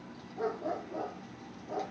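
A dog that has been put outside barks about four times in quick, uneven succession, sounding somewhat muffled, with no talking over it.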